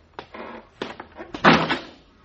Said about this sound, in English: the door, the latch, you didn't fix it. We're locked in here.